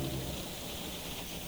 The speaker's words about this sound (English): On this particular night, the steady, gentle rain casts a glossy sheen on the nearly deserted streets.